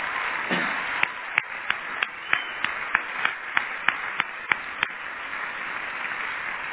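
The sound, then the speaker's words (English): A church audience applauding three men of a team working in India, with their wives and children, one morning: a steady wash of clapping with one set of sharp, evenly spaced claps standing out above it at a quick, regular pace throughout. “So I would like you to just applaud them this morning.”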